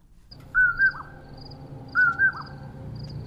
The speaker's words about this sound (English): And that bird you're hearing is a common porwill. It says its name as it calls. And we commonly hear them here in the spring and the summer on cool evenings. It's almost dark.